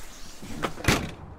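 A front door swings shut: a brief scrape or latch click, then a single solid thud with a short low boom, followed by quiet room tone.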